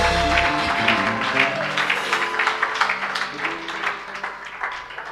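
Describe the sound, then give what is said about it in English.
An audience gives a clap of praise in the afternoon, many hands clapping in a dense, steady wash for several seconds, with low sustained tones humming underneath. “a clap of praise this afternoon.”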